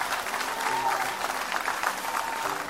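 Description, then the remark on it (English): An audience breaks into sustained applause as a clap offering, a dense wash of many hands clapping steadily, with faint crowd murmur underneath and no clear speech. “Give them a great big clap offering.”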